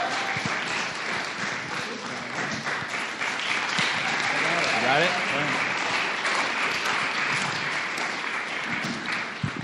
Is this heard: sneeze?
no